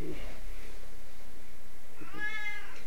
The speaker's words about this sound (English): Hey, you're looking at my cat. It's a cat.